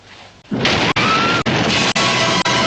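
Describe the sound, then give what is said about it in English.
After a brief hush, a loud movie explosion erupts: a sudden blast followed by a sustained roar of crashing, rumbling debris that briefly dips a few times, with no voices. “Notwithstanding the fact that, you know, that's a terrible explosion scene”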